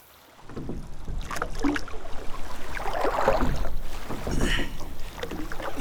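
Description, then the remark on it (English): Oars splash and churn through water as a rowing boat moves steadily along, with rhythmic sloshing strokes and a faint breath of wind over the surface, fairly loud. “Pull the boat around.”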